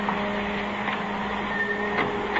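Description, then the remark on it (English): A darkroom print dryer runs steadily, giving off a constant mechanical whir and hum with a faint tonal drone, unchanging throughout and heard on its own without voices. “Kill that dryer, will you?”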